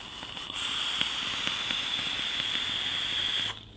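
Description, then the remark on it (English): An e-cigarette coil, a 0.3-ohm single coil in a Kali atomizer on a Stubby 21 squonk mod at 85 watts, sizzles for about three seconds. It makes a steady hiss peppered with small irregular crackles and pops, starting and stopping abruptly with no voices. “It helps that I'm getting a little bit of crackle from this, and it helps that it's loaded up with floss, which is like my new favorite flavor of all time.”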